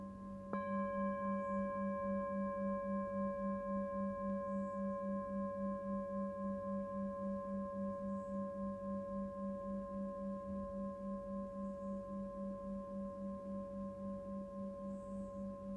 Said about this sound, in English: Doesn't matter how busy the mind gets, what it wants you to do, we're just staying with the sound of the bell.